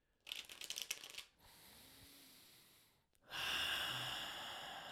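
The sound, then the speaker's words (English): Tarot cards being shuffled: a quick crackling riffle, then a softer steady sliding hiss, then a denser rustling shuffle, all soft with no voices. “And just connecting the cards by listening into the sound of them being shuffled and just trusting that this message will resonate no matter the future place or time to which you listen to this episode.”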